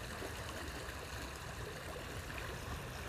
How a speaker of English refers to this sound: And something like this, a river, right?